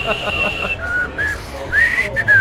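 A person whistles a TV show theme tune, a bright, bouncy melody in short rising and sliding phrases, fairly loud, with faint noise beneath and no talking.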